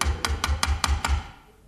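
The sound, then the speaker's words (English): Six rapid, evenly spaced knocks on a door, each a solid thump with a sharp rap on top, delivered in a steady rhythm before fading into quiet. No voices. “Well, go on, open the door. No, let them knock it out.”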